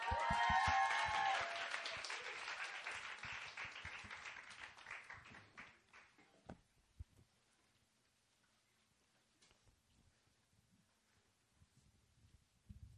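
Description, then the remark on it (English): An audience claps to welcome a visiting pastor, a dense burst of applause that peaks at the start, then thins and fades over several seconds into scattered claps and quiet room noise. “So I want us to give a warm applause.”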